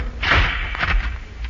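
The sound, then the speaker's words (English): The small cargo compartment door on top of a disc swings shut with a heavy thud, followed by a second muffled clunk as it settles into place, with no voices. “Ah, so, close the door.”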